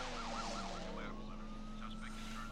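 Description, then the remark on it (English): A car chase from a film, with a siren wailing in rapid up-and-down sweeps over a steady, loud engine roar and a constant droning tone, busy throughout. “the best way to film a chase was to try to keep as much car to car as I could, so that you'll notice that a large portion of the car chase is with cameras mounted on cars or moving in one way or another, which gives it that tremendous kind of energy.”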